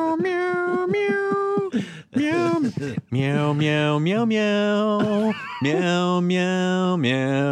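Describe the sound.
A human voice imitates a cat's meows in a sung, drawn-out way: a series of loud, sustained tones with sliding pitch, repeated several times with short breaks between them.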